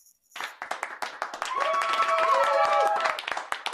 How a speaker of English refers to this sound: Woo, I love the cheering section. That's so fun.